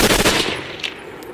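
Gunfire in a cartoon clip that kills the character Kenny: a rapid burst of several sharp cracking shots in quick succession that trail off into a fading echo, with a couple of faint high pops after, and no voices.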